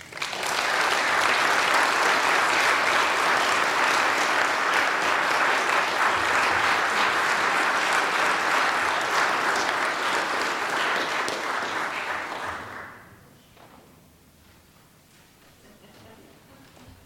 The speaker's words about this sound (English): All right, I'm going to dismiss our storytellers. You guys go out to the narthex. You go now, because otherwise you can get stuck in here. Can you give them one more round of applause as they're leaving?